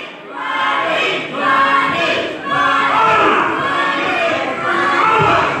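A dense crowd roars and cheers continuously, with overlapping shouts and yells swelling in waves for several seconds, loud and sustained without a break.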